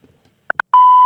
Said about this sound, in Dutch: U kunt uw boodschap inspreken na de piep. Hartelijk dank.